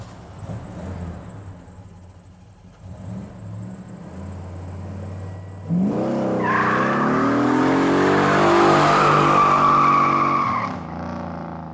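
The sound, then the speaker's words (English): A car engine idles with a low rumble, then revs hard and pulls away, its pitch climbing steeply and staying loud for several seconds, with a hint of tire squeal, before easing off. “I'm driving.”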